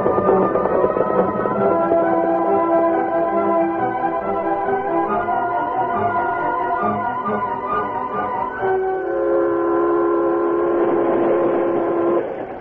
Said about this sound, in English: About 40 minutes after the train left Monument City,